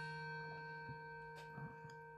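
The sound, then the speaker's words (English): Quiet wall clock ticking, a few soft irregular ticks over a steady, faintly ringing tonal hum, with no voices. “Oh dear, my clock's going to go off.”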